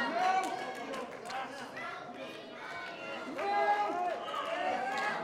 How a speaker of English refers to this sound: The crowd chanting again for Broke Big Mama.